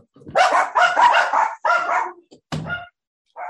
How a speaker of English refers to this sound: Don't worry, we can edit out dog noises.